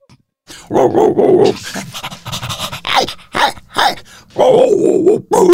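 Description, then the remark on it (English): A person vocally imitates dogs at a poker table, making loud growling and snarling sounds with short barking and panting bursts in between, in a rough, rhythmic sequence with no real speech. “Let's just do dogs at a poker table right now.”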